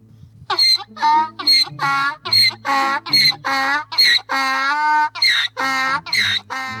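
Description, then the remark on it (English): A donkey brays loudly in a long run of rhythmic, rasping hee-haw pulses, about a dozen harsh honks that alternate between higher and lower pitches, with no talking over it. “Here's a donkey braying.”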